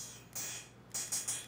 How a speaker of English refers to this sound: Oh, it's crackling, sorry.